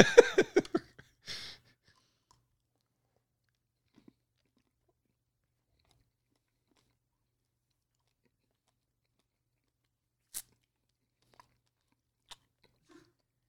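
Crunchy chocolate being bitten and chewed, a quick flurry of crisp crunches in the first second or so, then near silence broken by a few faint, scattered clicks.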